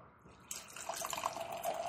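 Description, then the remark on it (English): A hazy, orange New England style IPA beer pours into a glass, starting with a sudden splashing rush and settling into a steady gurgle of liquid filling the glass, with bubbly trickling tones. No one speaks. “I mean, the way it pours is like New England style IPA.”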